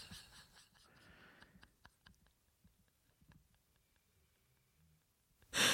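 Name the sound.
dog snoring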